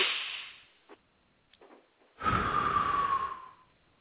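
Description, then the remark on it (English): A deep breath in through the nose, airy inhale first, then after a brief pause a long, loud exhale through the mouth with a slight whistling tone, with no talking. “Okay, let's close our eyes and let's just focus on our breathing for a second.”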